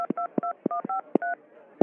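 Rapid string of dual-pitched telephone keypad beeps as the numbers from a card are punched in on a phone keypad, about six short tones in quick succession, each with a soft click of the button press, clear.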